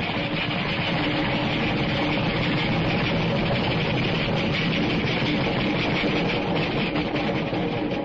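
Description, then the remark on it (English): An express train rushes past in a loud, unbroken roar of rumbling, clattering noise that stays steady for several seconds, with no voices heard. “Wait till the train goes by and hang on to your teeth. It's an express.”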